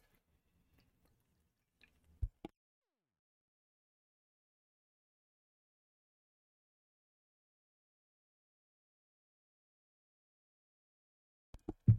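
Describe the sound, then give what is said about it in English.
Short slurping sips of a drink taken during a live YouTube stream: a couple of quick wet mouth sounds early on, a long stretch of near silence, then another brief cluster at the end. No talking. “Again, taking a sip.”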